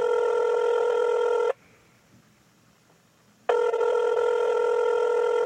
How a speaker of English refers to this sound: Is that for me? Yeah, but my phone rang at the same time. That's really, really weird.